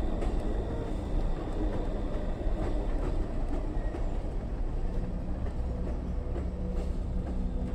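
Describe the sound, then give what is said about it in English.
A freight train rolls steadily along the tracks, a loud continuous rumble with scattered metallic clacks and squeaks of the wheels, no voices present. “They called him the Railroad Killer, and for more than a decade he crisscrossed the US by freight train, jumping off at random and bludgeoning his victims to death with whatever blunt object he could find.”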